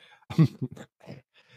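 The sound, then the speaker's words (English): A brief cough, a rough burst followed by a couple of quicker, fainter hacks, with no talking around it. “Oh, there's the cough.”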